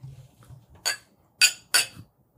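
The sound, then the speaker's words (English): Three bright glass clinks ring out in quick succession, fairly loud, as glasses of apple juice tap together for a toast, over a faint low background murmur. “Cheers, boys. It's actually apple juice.”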